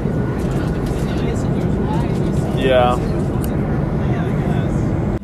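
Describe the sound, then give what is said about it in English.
A steady, loud airplane cabin drone of deep engine rumble fills the whole recording without letup, while a voice briefly speaks over it near the middle. “Just woke up on the plane after the first sleep.”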